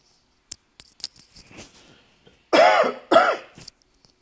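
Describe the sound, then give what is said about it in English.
Two loud coughs caused by allergies come in quick succession, each rough and raspy with a throaty vocal edge, preceded by a few faint clicks and rustling. No one speaks. “Sorry for the cough.”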